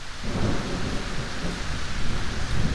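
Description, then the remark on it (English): A steady thunderstorm fills the scene: heavy rain hisses throughout while deep thunder rumbles low and continuous underneath, loud, with no voices present. “Power number one, the ability to predict an oncoming storm.”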